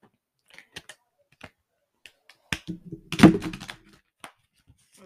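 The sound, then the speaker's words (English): A deck of oracle cards being shuffled: scattered light taps and flicks, then a dense, crackly flurry of riffling in the middle before it tapers back to a few soft clicks. No one speaks. “I gave them a good shuffle and stuff. I'll pull three of them out.”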